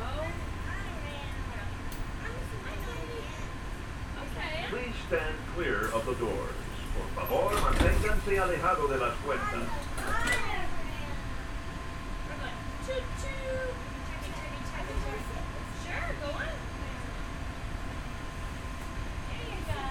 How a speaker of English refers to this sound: If you are standing, please hold on to the handrails and stay clear of the doors. The monorail will depart momentarily.